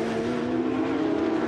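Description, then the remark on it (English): Porsche race cars in the Porsche Carrera Cup North America race at Laguna Seca cross the finish line, engines roaring in a steady, high-pitched drone, loud, holding an even tone throughout the short stretch with no voices. “Efren Castro, he goes across the line with Moise Oretzky”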